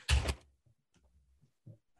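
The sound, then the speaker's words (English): A cat scratching at a door: one loud scraping rattle against the door, followed by a few faint soft taps and knocks, with no one talking. “Look at this fucking cat. I'm scratching the door.”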